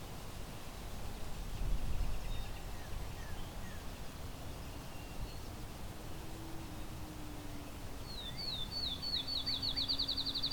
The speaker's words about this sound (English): Fairly close-up field sparrow.